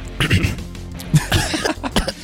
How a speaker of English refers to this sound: Dude, what? Did you just cough?